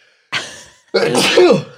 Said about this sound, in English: Right, here comes the sneeze.